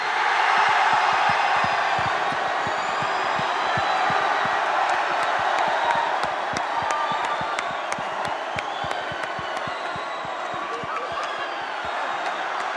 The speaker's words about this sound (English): Ladies and gentlemen, a big London round of applause for True Geordie.